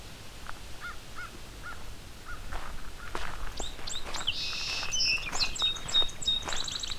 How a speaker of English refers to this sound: And a song sparrow. A song sparrow and an indigo bunting here.